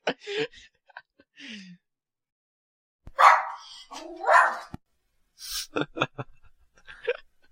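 A dog barks and yelps in several short, sharp bursts, loud, with brief pauses between the outbursts and no talking over it.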